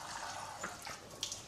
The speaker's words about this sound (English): And then we just add a little bit of water, but very little.